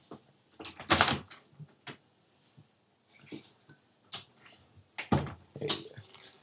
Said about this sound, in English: Hold on. I got to let my cat out of the door.